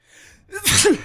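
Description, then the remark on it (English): A single loud fake sneeze performed by a voice into the microphone, a quick sharp intake building into an explosive burst, convincingly imitating a real sneeze. “can you do a fake sneeze into the mic?”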